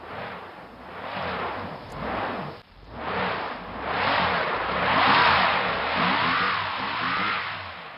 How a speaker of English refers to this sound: That I didn't like that sound. That was a car stuck in the snow. Yeah, I've heard that sound many times. Really? And it's not fun.